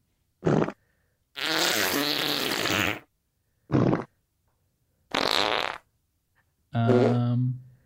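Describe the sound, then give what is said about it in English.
Five separate fart noises, loud, with silent gaps between them. Some are short blasts and others long, buzzy and sputtering, ending on a deeper tonal one. “What, fart noises?”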